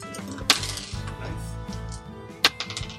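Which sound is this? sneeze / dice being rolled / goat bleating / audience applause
dice being rolled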